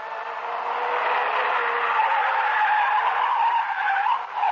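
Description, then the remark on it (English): A car's tires screech in a long, sustained, loud skid, the squeal wavering as the car swerves and circles wildly on the road, then easing slightly at the end. No voices are heard. “Reed seemed to sag, and the car began to circle wildly.”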